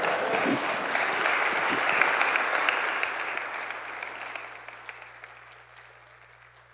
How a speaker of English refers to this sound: And everybody clapped their hand and said, amen.